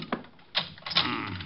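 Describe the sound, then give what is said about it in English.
A door being locked: a few sharp mechanical clicks and a short metallic rattle as the bolt turns, fairly quiet and with no voices. “Just locking the door again.”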